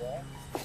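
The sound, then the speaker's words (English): A van left running in a lane idles with a steady, low rumbling hum throughout, while a brief fragment of a voice and a couple of small clicks sit over it. “In my hurry, I leave the van running, and you can hear it in the background.”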